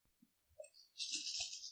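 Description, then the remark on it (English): Ten dice are rolled, first a few scattered light knocks, then a bright, sustained clatter as they tumble together across a hard table. Fairly loud, no voices. “I rolled 10 dice and got 5 ones.”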